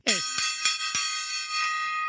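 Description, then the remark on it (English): A small gong struck several times at uneven intervals, each hit adding a sharp clang over a bright, shimmering metallic ring that sustains steadily throughout, with no voices. “I don't think the reverberation is long enough on this gong.”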